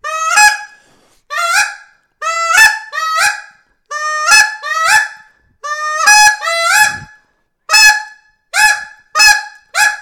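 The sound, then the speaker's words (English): A goose call blown in reed-breaking practice, sharp, honking clucks that crack and break, about a dozen notes in quick pairs and bursts, loud with no talking. “So what you're going to want to practice, and this sometimes is the full hour for guys, like just working on reed breaking. So see if you can repeat after me, hit that it even faster, like you're hitting it with your clucks.”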